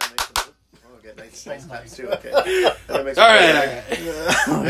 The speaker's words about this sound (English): I'll stop because I'm sure somebody's like, oh my god, this guy needs to stop clapping, he's hurting my ears.